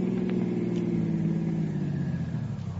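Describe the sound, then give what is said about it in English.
A car engine rumbles steadily, its low drone sinking slightly in pitch and easing off toward the end as the car slows to a stop at the end of a road. “Stop the car.”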